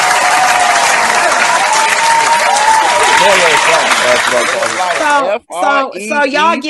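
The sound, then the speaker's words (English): A crowd claps loudly and steadily for about five seconds, with voices cutting through the dense clapping before it drops away and a person keeps talking. “Yeah, clap it up for.”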